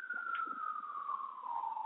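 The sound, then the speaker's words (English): An ambulance siren wails steadily, its single tone gliding slowly downward in pitch, clear and fairly prominent but with a thin, narrowband quality, with no one speaking. “Sorry, I know you have a siren, and I don't want you to have to cut all this out.”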